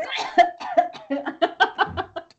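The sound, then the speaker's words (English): A rapid fit of coughing, around ten harsh, throaty bursts in quick succession that trail off toward the end, with no speech. “The booger makes me cough more than.”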